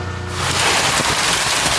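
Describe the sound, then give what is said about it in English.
Heavy rain and hail pour down overnight in Denver, Colorado, in a loud, dense, continuous roar that swells in after a brief low hum, with no voices. “Overnight, a second round of rain and hail dumping on Denver.”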